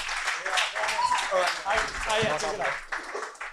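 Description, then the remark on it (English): A comedy club audience at Stand Up New York Comedy Club applauds TJ Miller in a steady, dense wash of clapping lasting several seconds, with scattered voices and cheers mixed into the crowd noise. “One more round of applause for TJ Miller, guys.”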